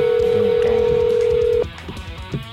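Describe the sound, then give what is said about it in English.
A loud, steady telephone tone from a studio phone system placing a call to a guest drones for about a second and a half, then cuts off abruptly, leaving a low background murmur with a few faint clicks. “I'm getting the phone system locked in, trying to get the signals going.”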